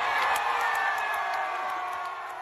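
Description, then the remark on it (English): A concert crowd cheers loudly and steadily for a couple of seconds, a dense roar of many voices with scattered shrill whoops and whistles on top, slowly easing off toward the end. “Let's hear that again and listen to the crowd.”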